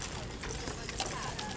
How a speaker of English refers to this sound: A horse-drawn carriage with two cast members in it. Must be some kind of wedding thing. It's a big white horse like a Clydesdale, a little smaller than a Clydesdale. And the carriage is white.